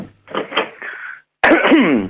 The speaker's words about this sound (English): It is, that's scary, isn't it? A cough. It's okay. I have actually had a COVID test of this cough, and it is negative. This cough will not go away.